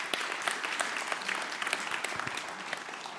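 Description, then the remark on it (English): An audience claps steadily to welcome speakers as they come up to share, a dense, continuous patter of many hands that stays even throughout, with no voices rising above it. “And so I would like you to welcome them and thank them for what they're going to share by applauding them as they come up.”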